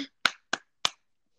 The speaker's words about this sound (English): Like, first, let's clap.